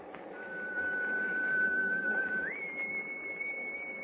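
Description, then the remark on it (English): A ship's whistle blows in fog, one long, steady tone that jumps up a step in pitch partway through, sounding over a constant low rumble with no voices. “Gosh, that whistle is...”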